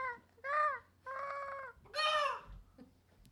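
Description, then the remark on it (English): Someone imitates a pterodactyl with a series of shrill, wavering screeches: three loud cries with short pauses, the last one rising highest, then a quieter breathy tail. “Should make your bird peace. Call. Your pterodactyl call.”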